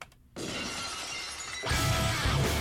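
A loud, sudden crash of shattering glass opens the wrestling entrance theme of Stone Cold Steve Austin, bursting in after a brief quiet, its bright, scattering debris ringing on before heavy, bass-rich music kicks in underneath.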